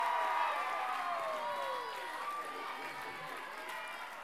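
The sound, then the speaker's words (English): A youth crowd at Nations Youth Ministry cheers and shouts for the new people in a steady, loud wash of voices, with some high whoops rising and falling above the noise, sustained throughout without a break. “Nations Youth, make some noise for all the new people tonight.”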